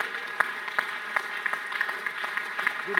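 An audience claps together in a steady, even beat, about three claps every second, over a sustained wash of voices that sound like group singing.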